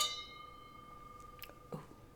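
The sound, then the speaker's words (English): Glasses of Zinfandel wine clink together in a toast, a single bright chime that rings on with a sustained high tone, followed by a few faint soft knocks and rustles. “So let's cheers. Cheers, honey.”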